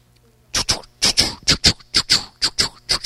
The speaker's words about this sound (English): That's the sound of a little printing press. And all of a sudden, I smell smoke. I turn off the machine, and smoke comes out of the little three-quarter most horsepower motor.